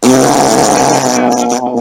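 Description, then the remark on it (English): A loud voice blows a sustained buzzy raspberry imitating a fart noise, one continuous sputtering blast lasting nearly two seconds with a wavering low tone. “Just paragraphs of 800 words of fart noises.”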